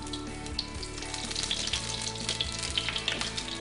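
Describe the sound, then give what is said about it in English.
Olive oil sizzles steadily in a hot pan, a dense crackling hiss with scattered sharp pops, holding an even moderate loudness throughout with no talking. “Now we're going to get the pan hot, which should be hot. There we go, a little olive oil.”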